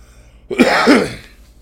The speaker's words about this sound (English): Sorry, guys. I need to learn to cough away from the mic. I fuck up every time.